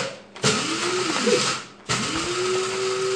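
A coffee grinder grinds a coffee called the jingle blend, whirring loudly in two bursts. Its motor whine rises in pitch as it spins up, with a short pause between runs and no talking.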